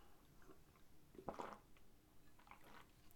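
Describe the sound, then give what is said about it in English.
A quiet sip of water by a pastor pausing during a sermon, with a brief wet gulp in the middle and a few soft mouth clicks around it, no talking. “I'm going to grab a drink of water here.”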